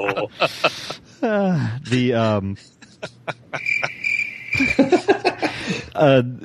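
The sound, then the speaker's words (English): A steady, high cricket trill rises in the middle and runs for about a second, while voices and other sounds come and go around it. “Bring in those crickets.”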